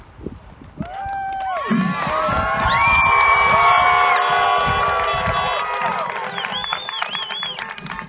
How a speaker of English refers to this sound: And if you're shouting and honking now, then you know the next sentence.